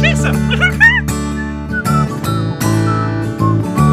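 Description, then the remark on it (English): A bright, wavering whistled melody with quick pitch glides, then longer held notes, playing over a steady bed of low, sustained musical tones. It is fairly loud throughout, with no talking. “Oh, that's a nice whistling, yeah.”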